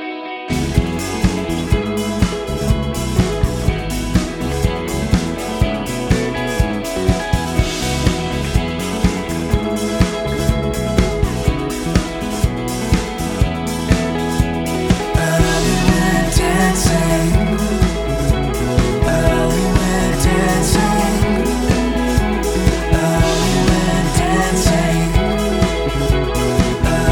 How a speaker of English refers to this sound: Sure that those high riffs on the right guitar come up when they play, and then the riffs on the left guitar come up when they play again. So they sort of are alternating. So it's like bum bum ding a ding a ding a ding a ding on the right guitar,